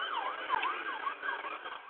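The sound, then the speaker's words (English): An ambulance siren wails steadily outside, its pitch sweeping up and down in quick repeated cycles, sounding slightly muffled, with no voices present. “You hear an ambulance.”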